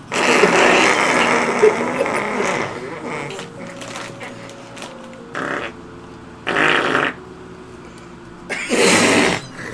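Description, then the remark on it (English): A voice blows a long, buzzy raspberry imitating a fart, followed by three shorter sputtering bursts with brief pauses between them, fairly loud. “No, see, you gotta do it so it sounds like an actual fart.”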